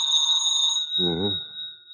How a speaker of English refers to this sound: Wouldn't want to lay a little bet why this phone's ringing at this time of night, would you?